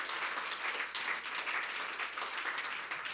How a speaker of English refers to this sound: Why don't you give the Lord one more great hand clap of praise in this house?